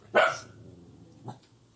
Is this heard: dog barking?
yes